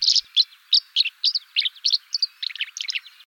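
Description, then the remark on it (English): Swallows chittering in a quick, steady run of bright, high twittering calls, about a dozen bursts in a few seconds, clear with no voices, signalling their discovery of a hatch of river mayflies. “Chittering swallows signal their discovery of a hatch of river mayflies.”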